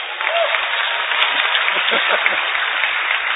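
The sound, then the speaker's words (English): An audience bursts into sustained applause, a dense, steady wash of many hands clapping at even loudness for several seconds with no pauses. “Jesus healed his mother-in-law. Clap.”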